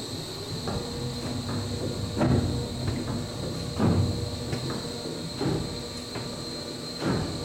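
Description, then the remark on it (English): A chocolate conche machine making Lonohana Estate and Onomea chocolate churns over a steady mechanical hum and high whine, moving liquid chocolate up in a wave that cascades back on itself, splashing in rhythmic surges about every second and a half. No one speaks. “But this has a fun splashing noise, which I kind of love.”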